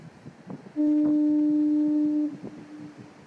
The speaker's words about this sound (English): First of all, people are really upset about the fog horns being turned off. I guess when you grow up in a coastal area, it becomes part of the soundtrack of the place, you know.